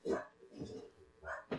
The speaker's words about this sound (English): You heard nothing. Exactly. Dog? What dog? What dog? Hi, dog.